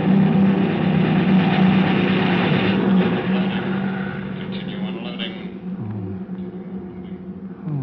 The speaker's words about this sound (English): There they come. Over at that sand dune. Messerschmitts, stay under your tin hat. Those babies cut grass.